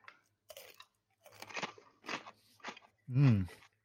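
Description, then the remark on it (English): Someone crunches on stale crackers: four dry, brittle chewing bursts in an uneven rhythm, moderately loud, followed by a brief voiced murmur at the end. “Oh, my crackers are stale.”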